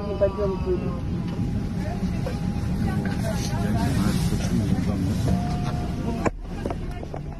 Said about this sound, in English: Soon after leaving his seat, he collapsed onto the floor of the plane. Oh, on a video recorded by one of the other passengers. You can hear him moaning in pain.